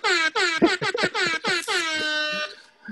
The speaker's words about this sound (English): Your bishop really want air horns? Mm-hmm. Listen. Get you a bishop that got air horns.